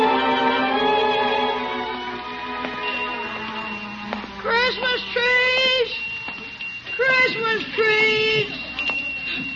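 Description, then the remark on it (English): A small hand bell rings with a sustained, bright metallic tone for a few seconds, then voices speak over a faint lingering high ring. “Put your little bell away.”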